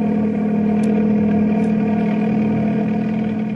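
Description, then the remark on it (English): A steady, loud engine of a helicopter equipped with floats roars throughout as it takes off, headed for the Finger River country. A constant low droning hum with layered mechanical harmonics and no voices, holding an even level. “We took off in a helicopter, equipped with floats, and headed for the Finger River country and the barracuda fish.”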